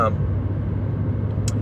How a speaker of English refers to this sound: I'm passing the truck now. Bye, truck.